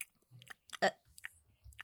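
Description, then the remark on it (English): Loud chewing of crunchy popcorn, with irregular wet crunches and smacking bursts, one especially sharp crunch in the middle, and no talking. “Please, can you not chew? Swallow like his peel, or do not eat popcorn in my presence.”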